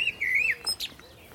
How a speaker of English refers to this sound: while a blackbird sings from an alder above us.